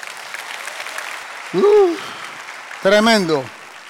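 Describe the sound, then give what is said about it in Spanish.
An audience applauds itself at the preacher's request during a sermon, steadily, in a dense, crackling wash of clapping, with two loud rising-and-falling shouts of cheering bursting out over it near the end. “Date un aplauso si puedes.”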